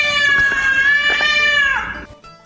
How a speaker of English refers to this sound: So here at Casa Galvisi. Is that the cat